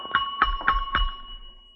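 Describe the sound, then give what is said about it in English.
A bell is struck four times in quick, even succession, each strike adding to a bright, sustained metallic ring that lingers and fades out after the last hit. No one speaks. “I'll ring the bell.”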